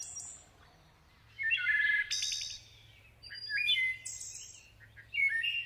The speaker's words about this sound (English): But it's the wood thrush. They have the most beautiful song on this planet.